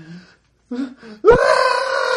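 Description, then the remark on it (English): A few short vocal sounds give way to a loud, sustained, harsh scream held to the end, a human voice imitating a monster's horrible, piercing shriek. “It just starts screaming horribly, and everyone give me another stability check.”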